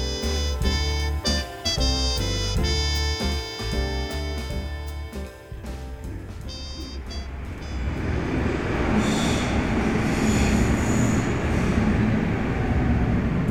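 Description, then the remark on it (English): On an empty underground train platform in a dark hall beneath Frankfurt Airport, a train hums with steady tonal whines and rhythmic wheel clacks, then gives way to a loud, broad rumble and rush of passing rail noise in a reverberant hall. “The train platform was empty in the dark hall somewhere under the Frankfurt Airport.”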